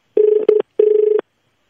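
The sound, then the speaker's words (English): A telephone ringback tone on an outgoing call to the Eagle Boys food delivery line: two steady mid-pitched buzzing rings, the first briefly interrupted, with a short pause between them. No one speaks. “So let's give them a buzz and just let them know how we feel.”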